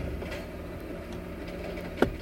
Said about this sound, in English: fucking stupid ass garbage truck, are you right behind me? Fuck off. Oh, you motherfucking stupid ass dumb loud thing.